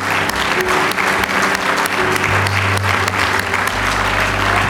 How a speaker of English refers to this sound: Give the Lord one more good hand clap of praise.